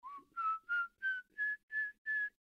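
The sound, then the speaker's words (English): An eerie human whistle from a man: seven short, evenly spaced notes that climb gradually in pitch, clear, with no talking. “The cracking bones and his whistle can be heard far away when he is close by.”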